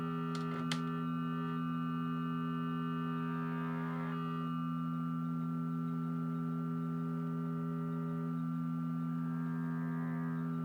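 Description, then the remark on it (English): A steady electronic FM synth drone with buzzing, clashing harmonics that swell and shift as the modulation index is changed, producing a queasy, wobbling tone that runs continuously with no voices. “You hit one of those like weird, makes you instantly nauseous harmonics. Feels like you're on a boat.”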